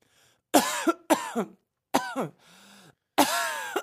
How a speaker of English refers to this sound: We're going to have to edit this out. Why? You don't cough in the mic